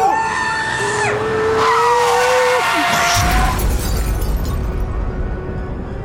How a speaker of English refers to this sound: All right. Wow. Gruesome. That was rough. Did not realize I killed 26 kids in that bus accident.